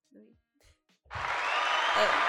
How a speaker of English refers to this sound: Oh, that's the wrong way. It's always a good start when we mess up the buttons. It's supposed to be the clap. The clapping one.